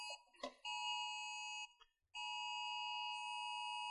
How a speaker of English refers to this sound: It's an amber alert, yeah. Right in here on my phone, see?